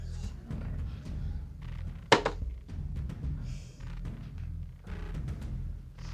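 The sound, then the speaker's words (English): Dice are rolled for a perception check in a tabletop game and hit a tabletop with one sharp, loud clatter that quickly rattles to a stop, coming up 8. A few faint clicks and knocks follow over a steady low rumble. “I don't like this dice rolling bull.”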